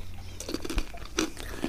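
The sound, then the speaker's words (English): Crisp crunching as food with a dark brown yeast spread like Vegemite is bitten and chewed, a quick series of sharp crackly bursts in an irregular rhythm with no talking. “Let me know what you're thinking as you have a munch on that.”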